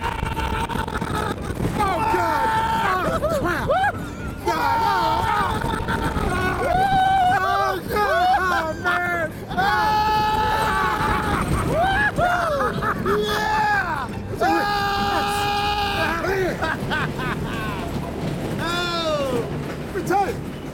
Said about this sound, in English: Oh, baby, that's a roller coaster.